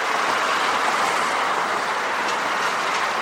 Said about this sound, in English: On a noisy street in Queens, industrial buildings stand next to car dealerships. The elevated subway train rumbles nearby.